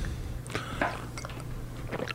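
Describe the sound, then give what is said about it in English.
Several wet, squelchy gulps of someone swallowing a drink, coming in an irregular series of short, fairly quiet bursts over a steady low hum. “I actually know exactly how much liquid he just drank just by listening to that. I was picking up on that, too. All the swallowing sounds.”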